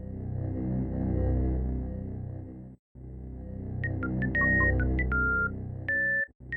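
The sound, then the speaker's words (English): Sparse, minimalist video game item room music on a very short loop: a steady low droning rumble underneath, joined halfway through by scattered electronic beeps at different pitches, irregular and phone-dial-like, with no voices. “It sounds like someone absentmindedly dialing a phone, right?”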